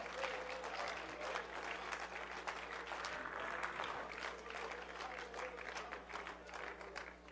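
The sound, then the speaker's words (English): A church audience claps their hands in praise to the Lord in sustained, dense applause that stays fairly steady in loudness for several seconds, with a faint murmur of voices mixed into the clapping. “Come on, let's clap our hands to the Lord and give Him praise.”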